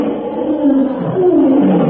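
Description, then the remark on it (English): A lion roars loudly and continuously as it charges, a deep rumbling growl that rises and swells over two seconds, intense with no talking. “As the lion charges, the ape-man steps nimbly aside.”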